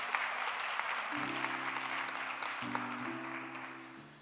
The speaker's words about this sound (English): Come on, let's give God a hand clap of praise one more time.